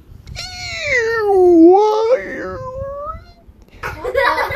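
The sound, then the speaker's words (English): A voice imitates a whale call with a long, wavering moan that dips in pitch and then slides back up, followed by a short breathy burst at the end. “That's the sound that whales make.”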